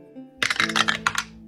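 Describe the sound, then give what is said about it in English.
Purple and green dice clatter across a hard tabletop in a quick, irregular burst of sharp clicks and taps, fairly loud, settling after about a second. They are rolled to choose the bread for a sandwich. No one speaks. “Today I'll be using these purple and green dice that were sent in by a viewer. Thanks, let's hope they're lucky. First up, roll for bread.”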